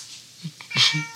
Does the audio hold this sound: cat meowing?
yes